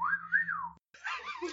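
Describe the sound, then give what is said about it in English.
A person whistles a single sliding, wavering note that rises and falls, then breaks off; a burst of rustling, clattering noise follows after a brief silence. “All right, well, as he's looking at you, he gives a whistle.”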